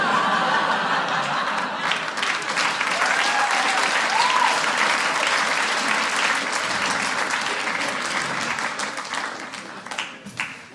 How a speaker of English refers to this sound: Thank you. Two applause breaks in a row. Stop.